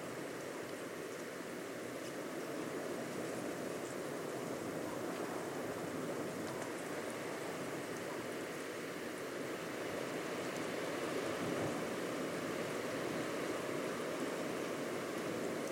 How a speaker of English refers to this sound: I also wondered what Studland would sound like when there was nobody there. So I left a sound recorder on the dunes to capture the sound of nighttime on a series of different nights when everybody had gone home.